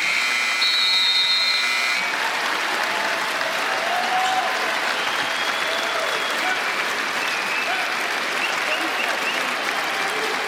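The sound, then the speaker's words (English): A large arena crowd at a Toronto basketball game applauds and cheers steadily, a dense, loud roar of clapping and voices, as Fred VanVleet holds the ball and lets the shot clock run out to honor Kobe Bryant, with a brief buzzing tone at the very start. “As Fred VanVleet holding on to it, and the crowd recognizing what this means.”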